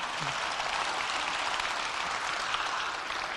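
An audience claps steadily for a few seconds, a dense, even wash of many hands with no pauses and no voices over it. The audience claps at the mention of Gordon Conwell Seminary.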